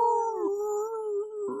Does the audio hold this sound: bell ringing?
no